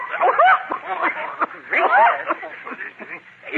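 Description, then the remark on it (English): A run of hoarse, barking coughs from a man getting hoarse with the start of a cold, with a raspy voiced edge, a bit like a small dog yapping, repeated in several bursts on a thin, old radio-style recording. “Oh, you sound more like a little dog, and you look like the Battle of the Bulge.”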